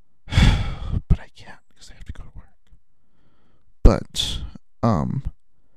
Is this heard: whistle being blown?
no